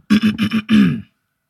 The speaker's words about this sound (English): I was about to clear my throat too, then you did it, and I ain't want to be a follower.